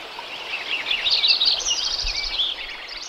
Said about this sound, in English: There were probably 10 species of birds at that particular moment that we've identified.